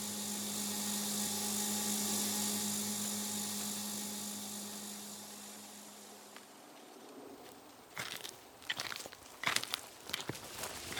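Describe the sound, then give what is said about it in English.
A steady, tonal mechanical drone from a drone dirigible hums overhead along a quiet road for several seconds and slowly fades away, followed by crunching footsteps on brittle ground. “The road is mostly quiet, save for the howl of distant coyotes and the occasional drone dirigible.”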